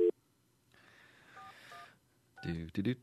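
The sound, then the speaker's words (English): Two short telephone keypad tones beep in quick succession over a hissy line, with brief bits of talking just before and right after. “Now we got the bleeping things.”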